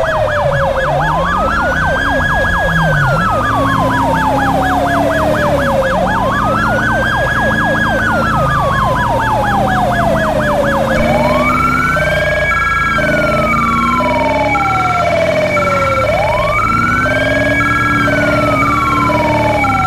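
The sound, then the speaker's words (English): A loud police siren wails in slow rising and falling sweeps, and partway through a rapid two-tone high-low pattern joins in, alternating steadily over the wail with no one speaking. “I know that pinging can get annoying for some people on the high low.”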